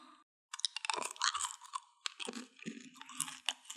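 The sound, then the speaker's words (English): Loud, crisp crunching as someone chews crunchy roasted crickets, a steady run of brittle bites and grinding over several seconds with no talking. “These crickets are roasted, I think.”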